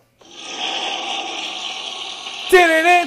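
A loud toilet flush: a steady whooshing rush of water for about two seconds, cut off abruptly by a brief warbling, pitched tone at the end.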